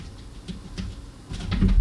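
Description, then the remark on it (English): A cat rummaging and scuffling about in a studio: irregular scratchy rustles and soft knocks that grow busier and louder toward the end, with no one talking. “Did you hear that rummaging and scruffling? We have a cat in our studio.”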